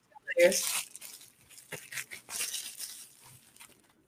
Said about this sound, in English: Bubble wrap! I am that person that's going to play with the bubble wrap more than anything else. Oh, I already know.